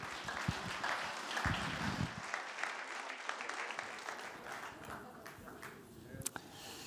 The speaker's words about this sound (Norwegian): Vi må gi han en god klapp.